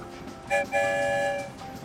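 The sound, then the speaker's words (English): A train whistle blows once, a brief opening note that catches and then holds as a steady, bright, sustained toot for about a second before fading, clear with no talking. “One whistle means yes.”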